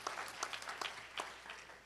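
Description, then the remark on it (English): An audience at a Sunday church service clapping their hands to the Lord to welcome His presence, a dense, steady patter of many claps with a few sharper ones standing out, sustained at a moderate level for the whole stretch. “Go ahead and clap your hands to the Lord by way of welcoming His presence here today.”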